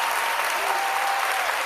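Thunderous crowd applause from an audience agreeing with a claim by Wanda Sykes: a dense, steady wash of many hands clapping at once, loud and sustained without pause or voices rising above it.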